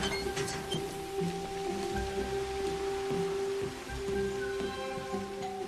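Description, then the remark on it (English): Steady rain falls continuously, a dense hiss of drops with faint patter on a surface, accompanied by a low, constant background hum. No voices are heard. “Just leave it here? In the rain?”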